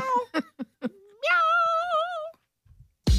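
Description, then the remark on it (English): A cat outside a closed bedroom door lets out a few short, chirpy meows, then one long, drawn-out wavering cry, heard clearly. A brief thump follows at the very end. “And I was like, look, there's like a whole thing about this because we have to like close the bedroom door and then he'll just cry outside the door.”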